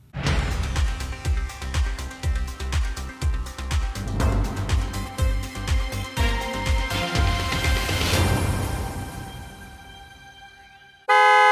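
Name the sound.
car horns honking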